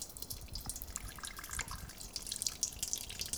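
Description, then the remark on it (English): Water pours in a steady stream for a few seconds as 128 grams of water are added to make an enriched dough, a continuous splashy trickle with bright droplet sparkles and no voices. “This is going to take 128 grams of water.”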